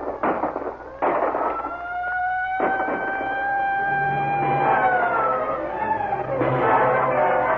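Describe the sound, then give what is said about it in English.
At night during a prison break, a siren wails with a steady, sustained tone that slowly sags in pitch, while several loud, sharp bangs burst out at the start and again near the end. “And then suddenly, a siren wails in the night.”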